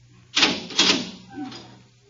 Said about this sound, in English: Open the door.